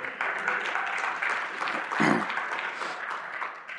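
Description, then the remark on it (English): A crowd claps steadily, a dense wash of many hands applauding together at moderate volume, with a brief louder swell midway before it carries on evenly. “You can all applaud that.”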